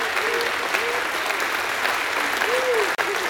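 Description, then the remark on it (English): An audience at Jewel City Church claps hands for God, a steady dense wash of applause filling the room, with faint voices calling out beneath it. “If you believe God is able to do it, give him a hand clap.”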